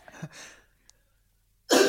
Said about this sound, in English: Sorry, had to get a cough out.